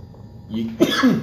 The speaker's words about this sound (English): I'm still coughing.